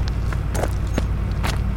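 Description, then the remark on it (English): A few scuffing footsteps at an uneven pace over a steady low rumble, as someone walks up to a car and climbs in; no one speaks. “You need to go sit in the car now.”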